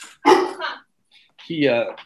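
A large seven-month-old puppy of about 85 pounds lets out two loud, deep barks, each drawn out slightly, with a brief pause of silence between them.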